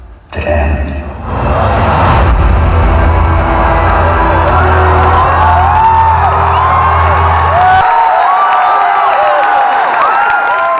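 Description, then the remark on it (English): A large crowd roars and cheers loudly at a trailer, a dense wash of overlapping shouts and whoops that stays steady throughout, with a deep rumble underneath for most of it. “That's just like the dull roar.”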